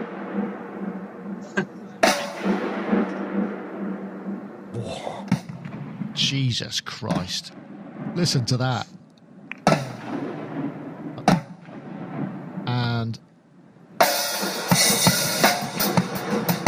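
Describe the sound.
Loud, booming drum kit hits, played by a marching band drummer checking the reverb, ring out with long, washing reverb tails in the huge domed Georgia Dome stadium, played in slow irregular bursts in time with the reverb while a man exclaims and talks over them.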